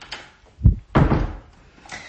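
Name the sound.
door being closed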